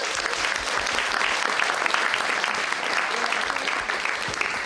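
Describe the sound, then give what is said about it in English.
A crowd at a storytelling event applauds steadily, with dense, continuous clapping that holds an even, loud level for several seconds without pause. “And round of applause.”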